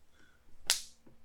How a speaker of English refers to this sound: That was me slapping my forehead.